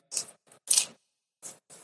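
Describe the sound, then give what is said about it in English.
Someone chews cheesy popcorn near a microphone, producing about five crisp, crackly crunches in an uneven rhythm with short pauses between them. No one speaks. “Try to chew away from the mic.”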